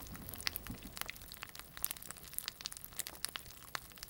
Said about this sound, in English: We had a few contact numbers for them and reached out for comment, but any time we called, we only got some weird crackling static.